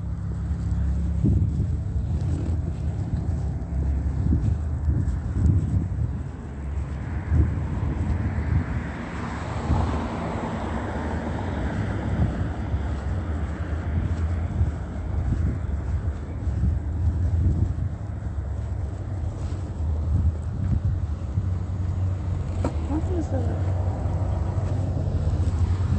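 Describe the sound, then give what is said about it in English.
Continuous street traffic rumbles at a crosswalk at Plum and Holt Boulevard, with engines droning and vehicles passing in waves, a heavy low-end roar under gusts of wind buffeting the microphone, recorded while walking at the crosswalk. “I'm walking at the crosswalk,”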